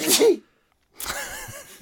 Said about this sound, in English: Could have sneezed on you and the microphone. Oh, I would have been pissed.